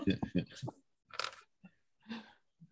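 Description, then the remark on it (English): A brief voiced sound opens, then a couple of loud, brittle crunches as raw dry masa chili noodles are bitten and chewed, with short pauses between bites. “If you're sitting next to … eating raw onions and I mean raw masa chili noodles”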